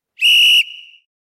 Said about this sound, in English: Whistle was ready.